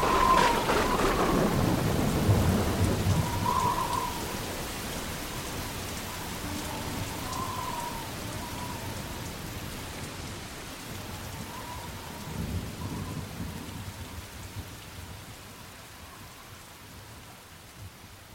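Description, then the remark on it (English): Steady rain hisses throughout, with a deep rumble of thunder rolling in at the start and a softer second rumble later. Faint high chirps float above the downpour. “So I gotta wait till after the rain stops, then I'll come out.”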